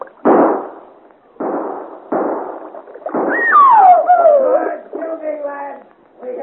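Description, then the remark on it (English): Four loud gunshots fired at people in a boat crack out at uneven intervals, each with a rough, rumbling tail. After the last shot, a high, wavering cry slides downward in pitch and fades out. “Good shooting, lad. We hit the girl.”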